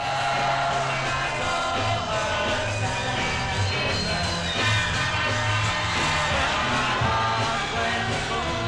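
A concert crowd at Carnegie Hall in 1964 screams nonstop, a dense, shrill, high-pitched wall of voices holding steady and loud for the whole stretch, with rhythmic low music from a band almost buried beneath it.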